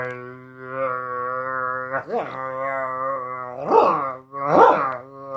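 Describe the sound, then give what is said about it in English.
A voice imitates a didgeridoo with a steady, buzzy low drone held for about five seconds, broken by a brief dip and then two louder, swelling wah-like pulses near the end. “Yeah, I was going to say that's a didgeridoo.”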